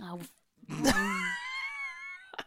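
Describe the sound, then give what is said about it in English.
A person lets out a loud scream in a living room that breaks into a wavering, drawn-out wail for over a second, with a short vocal sound before it and a brief noise at the end. “So if I want to scream in my living room, I'll have a scream.”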